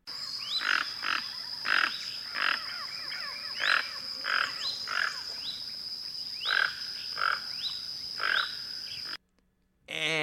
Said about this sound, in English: Now, let's go ahead and take a look and let's take a listen and see what this beautiful bird sounds like. So here is the Tuca Toucan.